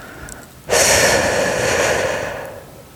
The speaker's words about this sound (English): Exhale completely through your mouth around your tongue, making a whooshing sound.